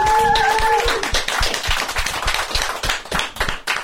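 An audience breaks into applause, dense overlapping claps filling the whole clip at a steady loud level, with a short whistle-like tone riding over the first second.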